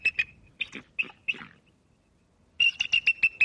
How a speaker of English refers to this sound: followed by our national symbol, the bald eagle